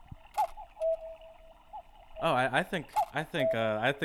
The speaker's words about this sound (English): I think we all know what that cuckoo means. That is the cuckoo of the untranslatable cuckoo clock? I get, yeah, the good old cuckoo's away.